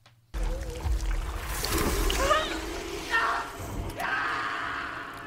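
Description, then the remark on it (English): A thick, wet squelching and bubbling of macaroni and cheese being stirred, continuing steadily for several seconds with gurgling bursts throughout. “That macaroni and cheese stirring sound is how you get that sound effect.”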